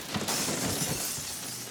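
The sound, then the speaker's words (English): A glass-breaking sound effect: a sharp crash of glass shattering, with bright splintering fragments scattering and tinkling for over a second, loud, with no voices. “Glass breaking? Don't we have that or something?”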